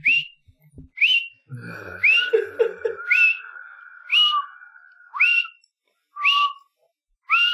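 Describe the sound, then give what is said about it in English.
A person whistles a bouncy, jaunty tune of short upward-swooping notes, roughly one per second, clear, with a brief held tone and faint low rumble partway through, while walking down a hallway. No one speaks. “I also whistle a jaunty tune”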